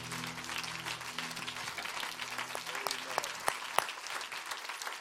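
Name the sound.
audience clapping hands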